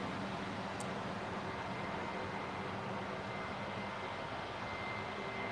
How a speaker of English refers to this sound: They're grading my road. They started at like 5 a.m. For those of you that don't live where there are dirt roads, grading is when they come with a big bladed truck thing. It's like a plow. They plow the road.